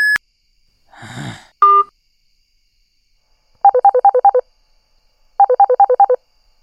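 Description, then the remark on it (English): A short electronic voicemail beep sounds, followed by a breathy sigh and another brief tone, then two separate bursts of rapid, pulsing phone tones with silence between them. “I can't come to the phone right now, but please leave your name and number after the tone and I'll get back to you as soon as possible.”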